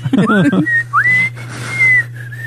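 Someone whistles a short tune, a few clear sustained notes that slide up and then settle, just after a brief burst of voice, with a steady low hum underneath.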